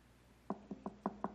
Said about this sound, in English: The knock on the door later is Nathan.